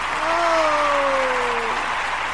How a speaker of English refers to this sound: And we're going to... maybe we need a longer clap for that.